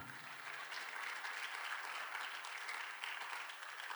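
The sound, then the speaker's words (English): A church audience claps after the sermon, a dense wash of overlapping hand claps that stays loud and even throughout, with no voices standing out. “All right, y'all clap.”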